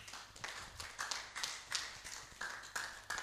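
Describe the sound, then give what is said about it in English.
A group of people clap their hands together in a steady rhythm, roughly three sharp claps per second, with no voices over it, clapping for the Church of Thessalonica. “Let's clap for the Church of Thessalonica.”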